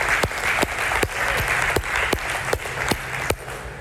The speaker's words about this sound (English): Give our Lord and our Savior a round of applause.